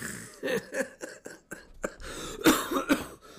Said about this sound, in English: There we go. Coughing fit.